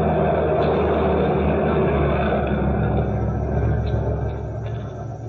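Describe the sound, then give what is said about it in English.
A truck engine rumbles steadily and loudly as the truck, which was unloading fish, tries to get out to the street, a deep continuous drone with a faint higher whine on top, easing off slightly toward the end. “These drivers. It's that truck. Wants to get to the street.”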